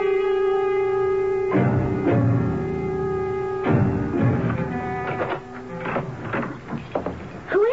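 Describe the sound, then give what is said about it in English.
A door opens and shuts with a few solid thuds and rattling clicks, set against a steady droning hum that runs throughout the scene. “I woke up and heard the door.”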